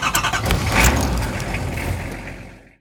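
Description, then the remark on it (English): A car engine turns over and catches as the car is about to reverse and leave, rumbling steadily before the sound fades out near the end; no one speaks. “Just as Dad was about to reverse the car and exit”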